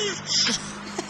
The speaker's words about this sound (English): It sounds like humping turtles. Turtles having sex, which sounds like this.